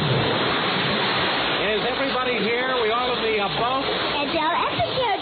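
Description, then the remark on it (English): Loud, steady rush of splashing water as a single-engine biplane falls into the ocean, unbroken, with voices shouting or talking over it partway through. “Well, in our last very exciting episode, Hollywood director Daryl Fanning's company of players was en route to Africa for the filming of King Chicken when their single-engine biplane stopped in midair and fell into the ocean.”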